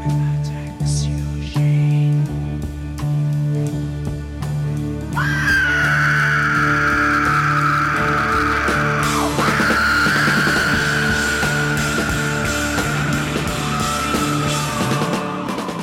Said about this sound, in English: comes in screaming just after the whisper of the title of the song, and you're not even sure the first time you hear it was even said.